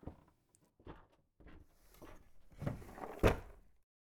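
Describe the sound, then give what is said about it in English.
The top drawer of a dresser is pulled open with a few light knocks and a rumbling wooden slide, ending in a sharper thump near the end. It's fairly quiet, with no talking. “Go to the dresser. Open the top drawer.”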